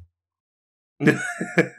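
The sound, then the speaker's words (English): A male dog hacks and coughs in a quick run of rough, throaty bursts that starts abruptly after about a second of silence and is fairly loud; he is coughing after chewing on things he shouldn't. “And he's wondering why he over here coughing on stuff, because you're chewing on stuff you shouldn't be coughing.”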